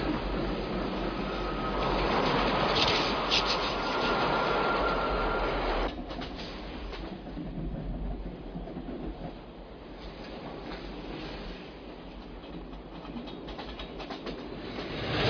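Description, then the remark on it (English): A train rumbles steadily along the rails, loud, with a rhythmic clatter of wheels and a brief high squeal early on before settling into a continuous rolling drone. “The train! It's from a movie.”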